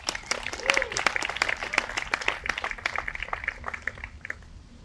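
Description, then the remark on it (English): A crowd breaks into steady applause for the speaker's father, who is 17 years sober, many hands clapping in a dense patter that carries on for several seconds before gradually thinning out. “Can we clap it up for him?”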